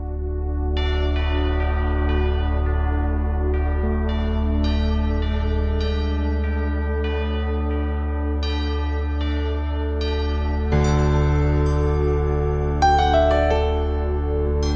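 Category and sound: signal or alarm, christmas church bells ringing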